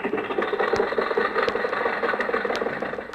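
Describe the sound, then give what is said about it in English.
Jack's old car, driven by Rochester, idles roughly and steadily at a traffic light, a continuous low rumble with a sputtering, uneven rhythm and metallic rattles clicking through it. “Jack, why don't you buy a new car?”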